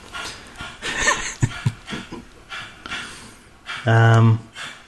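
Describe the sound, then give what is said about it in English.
Heavy breathing in quick, rhythmic huffs right by the microphone, briefly interrupted near the end by a loud, steady voiced whine or groan. “Heavy breather over there to fuck off?”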